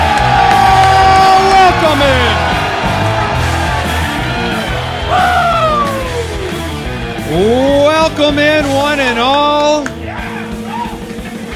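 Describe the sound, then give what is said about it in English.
A loud live crowd in Phoenix, Arizona cheers, whoops and yells continuously, with several voices bellowing drawn-out shouts above the dense roar, while a person speaks briefly over the noise. “A ferocious crowd in Phoenix, Arizona for today's Fantasy Footballers Podcast.”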